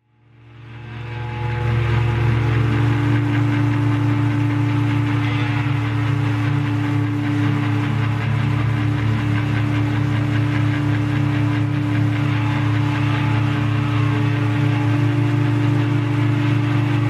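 A steady, droning rumble of amplified guitar noise, thick and engine-like, fading in over the first couple of seconds and then holding loud and unbroken like an idling tractor, with no voices.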